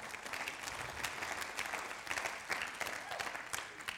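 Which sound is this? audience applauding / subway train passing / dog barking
audience applauding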